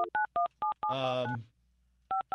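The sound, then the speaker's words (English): A quick run of about six two-tone keypad beeps from a phone being dialed, then a longer buzzy tone, a short silence, and two more dialing beeps. “No, I don't have to dial 9.”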